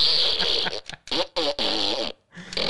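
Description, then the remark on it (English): A fart gun in a studio fires a rapid series of loud, raspy fart noises, several sputtering bursts broken by short gaps, with one last fainter blast trailing off at the end. “Ah, yes, a fart gun for the studio.”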